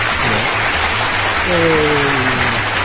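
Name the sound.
applause sound effect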